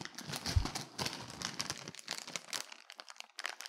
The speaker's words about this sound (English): Oh, this is a lot of rustling. Sorry.